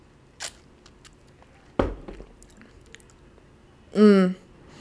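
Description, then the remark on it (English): Someone sips a stout beer: a soft tap, a sharper glass clunk, quiet wet mouth sounds, then a short satisfied voiced hum. No words are spoken. “Okay, I'm going to take one more sip.”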